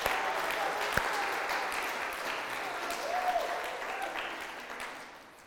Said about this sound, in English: You know, you are allowed to clap, right?